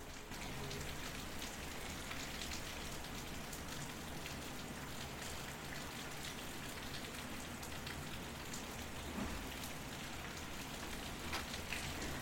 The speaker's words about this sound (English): So I was sitting here, just recording some of the rain to play out for you guys to gently go off into sleep.